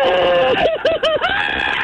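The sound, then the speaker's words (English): A loud, high-pitched human scream recorded by a caller on the Just Scream Baby phone line after the beep, held for nearly two seconds, its pitch wavering and breaking into quick warbling wobbles midway before steadying again. “Please record a scream to share.”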